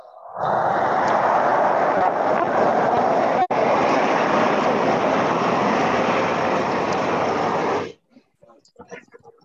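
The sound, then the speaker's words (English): A loud, steady rumbling roar like a train going by fills about eight seconds, then cuts off abruptly, leaving only faint scattered voices. “Is there a train that's running through the shul today, boys?”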